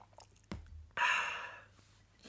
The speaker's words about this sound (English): And I'll just have a sip of my beverage before I get into this.